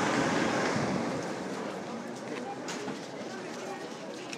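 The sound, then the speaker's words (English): Strong wind roars steadily outdoors, a loud, continuous rushing noise that buffets the microphone, easing slightly after the first second but never letting up. “I don't know if you could hear any of that windy stuff.”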